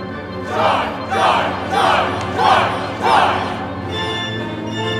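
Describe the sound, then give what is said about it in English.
An opera chorus joining an aria shouts "Joy" in unison, five loud rhythmic bursts spaced about every three-quarters of a second, each swelling and fading over a steady orchestral background. “Wait, what are they shouting?”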